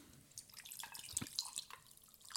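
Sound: drink being poured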